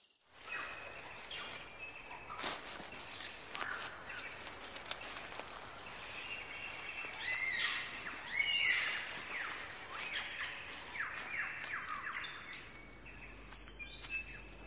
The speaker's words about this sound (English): What bird has the most elaborate, the most complex, and the most beautiful song in the world? Well, I guess there are lots of contenders, but this bird must be one of them. The superb lyrebird of southern Australia.